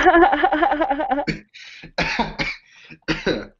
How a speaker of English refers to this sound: That's the weakest like cough I've ever.